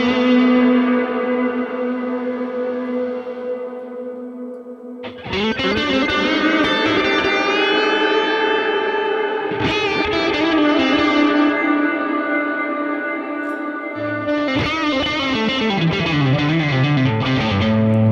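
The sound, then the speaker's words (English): A loud electric guitar with a humbucker pickup in the bridge rings out through echo and distortion set up in Axe-Edit, sustained notes smearing into a wash of repeats, with the tone shifting abruptly a few times as new chords are struck. No one speaks. “When you get a new sound, it takes a second to blend all the echoes back together.”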